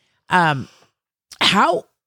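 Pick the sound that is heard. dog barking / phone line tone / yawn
yawn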